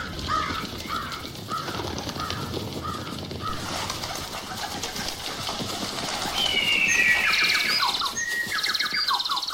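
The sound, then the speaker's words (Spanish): A busy chorus of birds calling, with cooing, cawing and bright chirps and whistling trills layered over one another, steady throughout, growing slightly louder toward the end. “Llenamos el aire de pájaros.”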